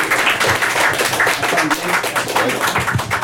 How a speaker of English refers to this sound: Everyone, please get that energy up. Start that clapping now.